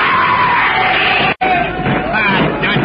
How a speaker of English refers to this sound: Suddenly, from all sides of the clearing, a screaming horde